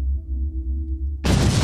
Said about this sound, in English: explosion goes straight in front of all of you.